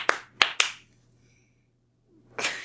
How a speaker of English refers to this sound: What was that? Was that applause? That was my German Pennsylvania clap.